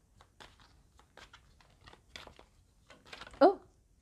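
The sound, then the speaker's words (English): Crisp papery flicking and snapping of a deck of tarot cards being shuffled in short, irregular bursts to narrow them down to one or two cards, with a brief louder vocal sound near the end. “So just going to do a little bit more shuffling, narrow this down, and we'll keep going until we get down to one or two cards.”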